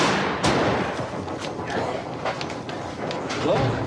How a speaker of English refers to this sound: Look, we're shooting buffalo.